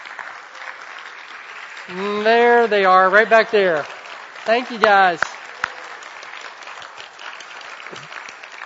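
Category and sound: crowd, audience clapping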